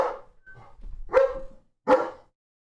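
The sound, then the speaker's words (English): A puppy barks, two short, sharp yaps about a second apart after a softer whine-like sound, with no one talking. “Come here, puppy.”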